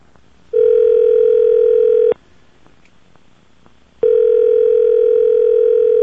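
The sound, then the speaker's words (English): A telephone ringback tone of an international call to Canada, dialed from a paid counter phone in the desert: two long, steady, buzzy tones at a middle pitch, separated by a quiet gap of about two seconds filled with faint line hiss. No voices. “I pay her the money and dial.”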